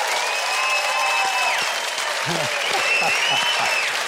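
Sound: audience cheering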